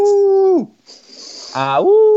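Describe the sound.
A person mimics a wolf howl into a microphone: a loud, steady wail that drops off, a breathy pause, then a second howl swooping upward into a sustained tone.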